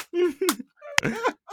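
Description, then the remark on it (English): A single hard, sharp hand slap right up close to the microphone, a loud crack between stretches of a man's speech before and after it. “That's a power slap.”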